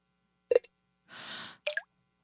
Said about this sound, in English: Oh, it's leaking. That's a leak. Yeah, you might have gone through the. That's definitely a leak. Might have gone through the hatch.